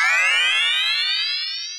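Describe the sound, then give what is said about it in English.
A time machine sound effect: a loud, buzzy synthesized tone that glides steadily upward in pitch for under two seconds, with no voices. “It's obvious that some changes are coming to religious news and probably to our show, which is why we've brought back the time machine to check out some headlines from the future.”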